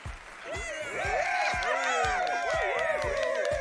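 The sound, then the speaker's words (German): A canned applause sound effect played from a soundboard button assigned to C4: a crowd clapping with overlapping cheers and whoops, swelling quickly and holding at a steady, fairly loud level for a few seconds. “Der Applaus, der auf C4 liegt, den drücke ich heute nicht mehr.”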